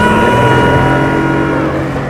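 A loud, steady motorboat engine drones close by, its throaty hum holding even throughout with a faint rushing wash of water beneath it.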